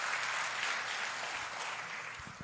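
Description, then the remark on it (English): An audience applauds steadily to celebrate the rescue of a group of boys and their coach, many hands clapping together in a dense, even wash of crackly claps that holds at a fairly constant loudness throughout. “That's a good spot to clap.”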